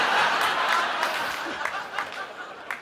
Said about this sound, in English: Are you from Indiana? Is that why you're applauding?